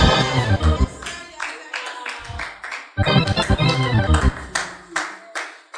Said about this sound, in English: I didn't ask you to clap, but if you really want to clap, can you clap without brokenness?